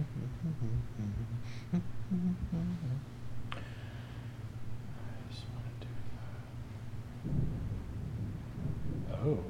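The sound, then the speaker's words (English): Live thunder rumbles low and steadily for several seconds, a deep rolling growl with a few swells, while quiet murmuring voices sit faintly in the background. “Actual live thunder on microphone.”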